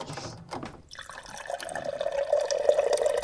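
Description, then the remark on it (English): A steady stream of water trickles and pours into a container, its tone rising slightly as it fills, with a few splashy drips at the start; a produced segment-intro sound effect, fairly quiet, no voices. “Is this someone urinating? It sounds like they're urinating into a bong.”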